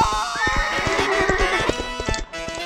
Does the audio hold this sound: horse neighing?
yes